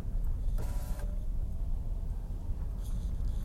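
Steady low road rumble from cars driving in a residential cul-de-sac, with two brief brighter swells that sound like vehicles passing by, one early and one near the end. No one speaks.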